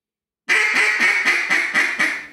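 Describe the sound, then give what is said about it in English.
A duck call blown in a coarse hen quack, driven from the throat and pitched down: a quick, loud, raspy run of about eight nasal quacks, evenly paced and fading slightly at the end, with no talking. “Now what's the difference in your tongue position or your mouth cavity on the coarse?”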